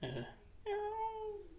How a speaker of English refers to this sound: Was that your dogs? It's a cat.